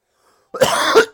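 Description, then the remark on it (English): A single harsh cough bursts out after a moment of silence, rough and throaty with a second push near its end, no talking around it. “Now when I cough, I'm just going to say Marlboro.”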